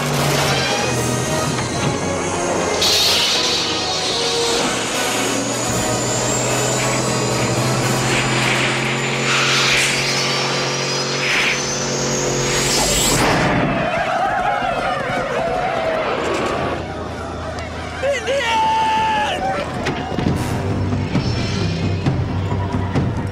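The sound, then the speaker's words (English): A DeLorean car engine roars loudly as it accelerates to 88 miles per hour, whining tones climbing in pitch, until a sudden crackling burst cuts it off, leaving quieter rumbling and scattered electrical zaps. “I'm going to go for the original one that we saw in the Pine Mall all those years ago when it hits 88 miles per hour.”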